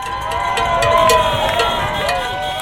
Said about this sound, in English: Some people celebrating, cheering, honking, literally dancing in the streets.